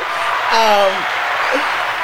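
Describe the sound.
A burst of applause-like clapping, steady and dense for about two seconds, with a brief voiced whoop gliding downward partway through.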